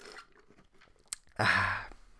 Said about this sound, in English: I think my throat's doing all right. Let me just take a sip of the old Coke Zero.